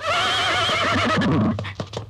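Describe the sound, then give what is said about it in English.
A horse gives a loud whinny lasting over a second, its wavering cry trailing off into a few snorting breaths and soft shuffles. “He's like an angry horse.”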